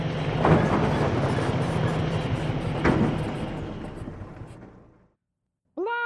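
An old car rumbles up a driveway, its rough engine noise steady with two sharp knocks, then dies away into silence before a voice starts speaking.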